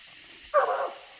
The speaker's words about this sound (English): The dogs take the track about a quarter mile down the creek and begin to bark treed. That means they think they've found the tree that the raccoon ran up.